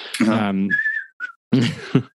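person whistling a tune

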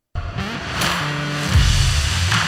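car engine revving

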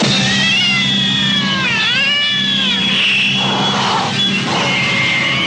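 cat yowling

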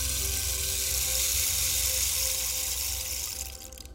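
rain falling

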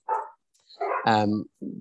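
neighbors' dogs barking

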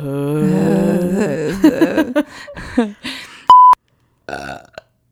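censor bleep tone

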